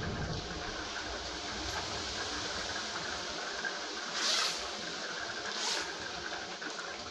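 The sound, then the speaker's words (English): Two quick zipping rasps, a few seconds apart, from a backyard trampoline enclosure net being zipped up, heard over a steady, rumbling background hiss with no one talking. “Sorry, I had to go zip the trampoline.”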